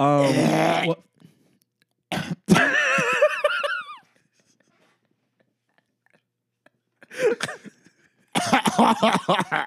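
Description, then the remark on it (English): Several harsh, throaty coughing bursts, with a long hacking fit in the middle and quieter silent gaps between the later rasping spasms. “Middle of the night, coughing up.”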